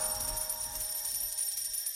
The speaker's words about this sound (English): Yeah, so here we go. Crypto Corner. Beep, beep, beep.